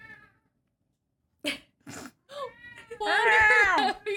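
A cat cries out in a loud, drawn-out wail that rises and falls in pitch, preceded by a couple of short, sharp bursts of sound after a moment of silence.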